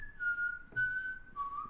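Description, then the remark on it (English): Someone whistles a slow, eerie melody of a few long held notes that drift slightly downward, clear with no talking over it: the whistled tune from the film Kill Bill 1, whistled by the blonde woman as she walks down on her way to kill the bride. “I'm pretty sure it's Kill Bill 1 with the blonde girl who's walking down and she's whistling.”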